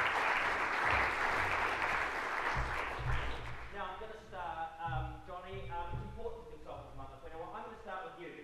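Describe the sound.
An audience gives a round of applause for a panel of speakers, a loud, dense burst of clapping for a few seconds, then it fades as a man's voice starts speaking over the last scattered claps.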